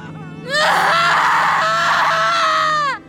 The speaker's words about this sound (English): I held my mother as she screamed, and I screamed with her.